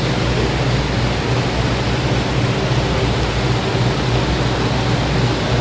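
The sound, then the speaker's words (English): A steady, dense roar of rushing water from a river in flood, loud and running without a break from start to finish, with no voices. “I've been in Israel where the Jordan River is outside of its banks, and you don't want to get close to the river.”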